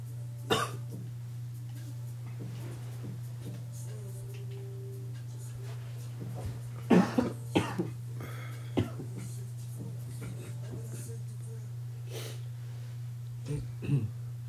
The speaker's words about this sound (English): my bad to the listeners have to hear me clear my throat out and shit.